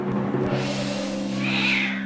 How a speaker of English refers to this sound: The wake and bake animal of the week is the house cat.